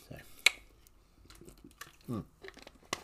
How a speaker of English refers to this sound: I'm just going to have a sip of water, a sip of Woolworth's spring water.